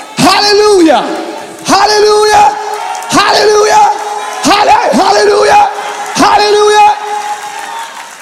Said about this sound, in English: I give you permission to yell at your neighbor and say, be free!